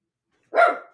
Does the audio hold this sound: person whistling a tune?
no